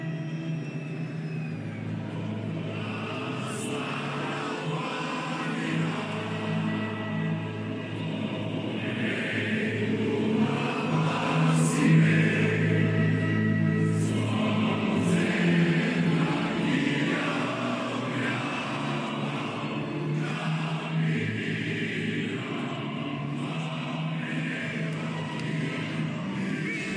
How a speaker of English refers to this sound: That's the visiting crowd of Bulgarian soccer fans at a 2019 game at Wembley Stadium.